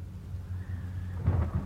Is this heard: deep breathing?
no